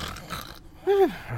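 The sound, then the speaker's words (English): A woman snoring upstairs in a house: a single short, throaty snore with a tonal, slightly falling pitch, rising briefly above a low, murky background hum. “But with your good success, it sounds like a woman snoring.”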